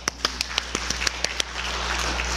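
A round of applause at a service for the Affirm Committee, the pie makers and the ice cream bringers: a few sharp, evenly spaced claps stand out at first, then blend into a steady, moderately loud wash of clapping hands with no voices.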